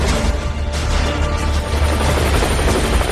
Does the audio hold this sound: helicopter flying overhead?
yes